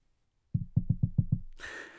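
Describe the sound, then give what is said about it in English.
Six quick, solid knocks on a wooden stand in a fast rhythm, done to knock on wood, fairly loud, followed by a short breathy exhale or rustle. “For the audio people, I'm banging on my stand here because I had to knock on wood.”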